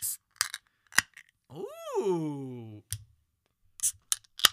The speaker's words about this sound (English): We're just going to drink. Right out the can. These crowlers. Let's crack them open. Let's see how crisp a crowler sounds when it opens.